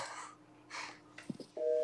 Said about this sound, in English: You making phone noises? No, I'm not doing nothing.